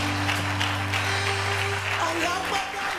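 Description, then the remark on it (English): An audience claps together in a steady, dense patter that runs throughout, with a low sustained keyboard tone humming underneath and a faint voice briefly rising near the end. “Your clapping is not strong.”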